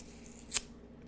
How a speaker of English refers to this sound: So, if y'all hear some tearing of paper in the background, I'm tearing some paper up.